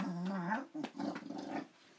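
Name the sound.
dog growling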